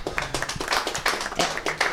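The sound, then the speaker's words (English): An audience claps steadily, many hands producing a dense, continuous patter of sharp smacks at a fairly loud level, with no voices standing out. “Keep clapping, because I got one more thing in here.”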